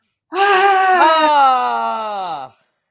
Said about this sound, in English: So if you don't want to do that, we'll just do the lion's breath, and we're going to get it big and loud. So close your eyes. Deep breath in.